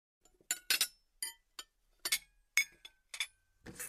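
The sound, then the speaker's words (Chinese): Bowls and chopsticks are cleared away after a meal to be washed, clinking and clattering in a quick, irregular series of bright, sharp knocks, about ten in all, ending in a brief scraping rustle, with no talking. “行了行了，就你八卦，来来来，把碗筷都收拾收拾，还要洗碗呢。”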